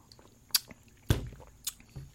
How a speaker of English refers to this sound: All right. Well, let me take another sip here.